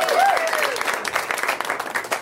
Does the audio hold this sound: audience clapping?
yes